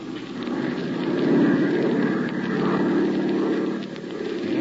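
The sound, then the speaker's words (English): A propeller airplane engine drones steadily in flight while searching for a derailed train about 100 miles back from the border of Chile, a continuous low, buzzing roar with a throbbing pulse that swells slightly midway and holds without pause. “Dip your starboard wing a little.”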